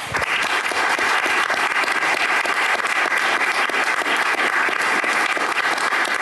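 An audience claps steadily for several seconds, a dense, even wash of many hands with no pauses and no voices rising above it.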